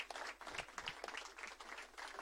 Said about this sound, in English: Let's give him a round of applause, representing the pastors.